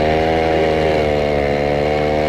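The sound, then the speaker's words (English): A chainsaw runs steadily, its loud buzzing engine holding a constant, slightly wavering pitch throughout with no voices over it. “You're in luck when you got a mechanic chainsaw.”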